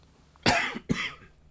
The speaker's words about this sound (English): Excuse me. That's not a cough, that's just something went down my throat, some tickled my throat.